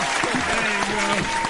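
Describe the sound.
A crowd applauds steadily, a dense, sustained burst of clapping, with a voice faintly audible beneath it.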